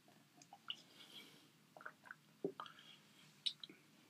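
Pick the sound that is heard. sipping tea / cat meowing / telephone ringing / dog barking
sipping tea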